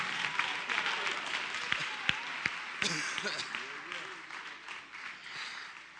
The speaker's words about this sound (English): Clap your hands, everybody, and give God praise.